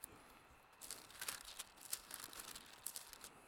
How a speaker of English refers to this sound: And I'm turning the pages the wrong way, as I usually do when I get up here.